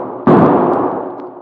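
A single loud gunshot cracks out suddenly and then fades in a long, rumbling decay, with a couple of faint clicks trailing in the tail. No one speaks.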